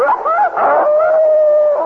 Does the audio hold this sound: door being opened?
no